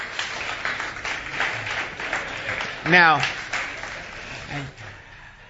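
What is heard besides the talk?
audience applause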